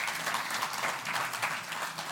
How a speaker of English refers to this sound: And by the way, like, man, Team First Impressions, can we just give them a round of applause? Like, man.